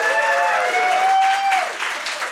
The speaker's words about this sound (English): A big round of applause for The Spot for hosting us, taking a chance on us being here today.